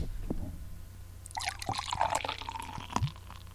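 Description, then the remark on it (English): A Trader Joe's dark brown ale pours into a glass with a bubbling, gurgling rush after a brief quiet moment, with a few clinks and thumps along the way, forming a creamy head. “So I'm going to do a little pour here. Maybe you can hear it.”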